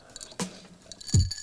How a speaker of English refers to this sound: Would it be cool to have the ice clink in the background?